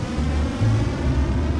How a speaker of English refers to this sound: The launch of a rocket carrying the first stage of the International Space Station.